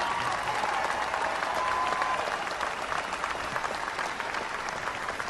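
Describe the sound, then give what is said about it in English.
Sustained applause from a large audience, a dense, steady wash of clapping that holds at an even level for the whole stretch without letting up, with no voices standing out. “You hear the prolonged applause?”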